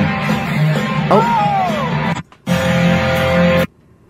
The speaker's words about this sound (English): Have a listen. Here we go. You'll hear the crowd cheering, then you'll hear him fall.